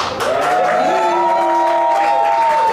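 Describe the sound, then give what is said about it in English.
An audience at the show Live with Carisha cheers and applauds steadily to welcome a guest, a dense wash of clapping under sustained, rising whoops and shouts that hold loudly for a few seconds. “Make some noise”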